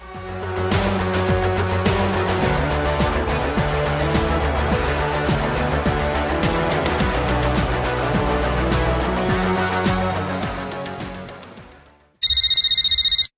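A stretch of steady instrumental music fades out, then a single loud telephone ring bursts in at the very end, bright and electronic-sounding, with no voices.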